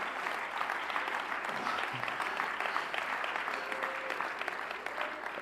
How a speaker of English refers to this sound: I'm glad to be in church today. You people are great people. Oh, somebody ought to clap your hands to the Lord.